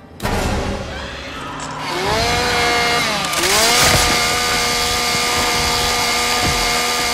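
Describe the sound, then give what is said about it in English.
A chainsaw engine starts abruptly and roars continuously, its pitch dipping and climbing as it revs, then holding a loud, steady buzzing whine with no voices. “And then the fucking mark number four is the fact that he somehow manages to rev the chainsaw, get it started and stab her, all within a nanosecond because it goes from silent to chainsaw going through the seat.”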